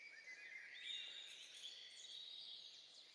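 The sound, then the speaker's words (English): Soft, continuous birdsong chirps and trills in the upper register from a forest-noise ambient track, faint, forming a steady ambient bed with no voices present. “It's just there, the birds chirping.”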